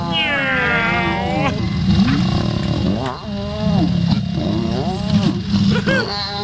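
Lions mating: loud growling yowls rise and fall in several drawn-out bursts over a steady low rumbling snarl, with no talking.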